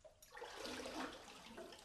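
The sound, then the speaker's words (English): A loud rush of churning water surges and swirls for a couple of seconds, a dense hissing roar of waves washing through a sea cave whose mouth is about 20 feet high with a big rock in the middle, with no voices. “There's a big rock in the middle at the mouth. I guess the cave goes all around that. That's probably what makes the waves boom.”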